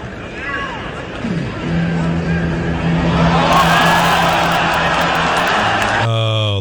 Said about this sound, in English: And as the dog's now returning back to the trainer to, like, go again, the dog totally stops and squats. And I want you to listen to the crowd here. Listen to the crowd, okay?